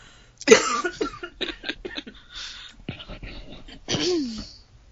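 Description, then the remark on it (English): Two people coughing: a sharp cough bursts out, followed by a few softer breathy hacks and throat sounds, then a second strong cough near the end before things go quiet. “Since we're both coughing.”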